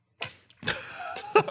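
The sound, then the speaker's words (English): A voice imitates the squeak of wet Crocs while walking around at the pool: a few squeaky, rubbery vocal chirps likened to SpongeBob squeaks, one drawn out with a rising whine, then a short sharp squeak at the end. “Yeah, especially when you wear them to the pool and then you're walking around and they go...”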